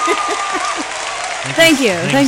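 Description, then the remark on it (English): A crowd cheering sound effect: a crowd cheers and claps in a steady, dense wash of noise, and loud whoops and shouts rise over it in the second half of the short burst. “All right, well, now the crowd goes wild for our awesome advice.”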